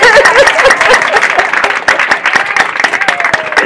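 A crowd applauds loudly and steadily, dense overlapping claps filling the whole stretch, with a few scattered cheers and murmurs mixed into the clapping.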